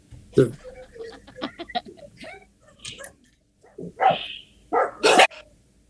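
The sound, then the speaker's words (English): Three dogs, two of them a neighbor's, bark back and forth at each other outside in a run of sharp, overlapping barks, with a couple of loud barks near the end. “Like a kennel or it's the neighbor's 2 dogs were outside at the same time, and so the 3 of them have to bark at each other.”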